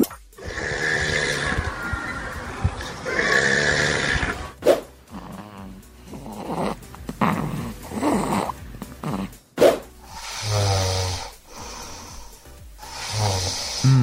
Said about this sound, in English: What type of snores are we talking? Shall we have a little listen first? Okay. Today's three snores.